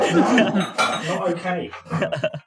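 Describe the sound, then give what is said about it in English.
A cat slowly pushes a mini glass bottle of Prosecco towards the edge of a kitchen countertop; it scrapes and clinks unevenly across the hard surface, a shifting, ringing grind in short bursts, with faint chuckling underneath. “the cat had found a mini bottle of Prosecco, which I don't even know where that's from, and was pushing it slowly towards the edge”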